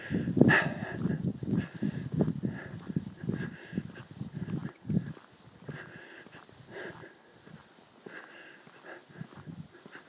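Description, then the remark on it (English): A dog on a quick night-time stroll outdoors in a green area moves about, with snuffling, breathy sniffs and soft shuffling that come in uneven bursts, louder at first and then fading into quieter rustling. “Good dog. You're waving for me. You're a good dog.”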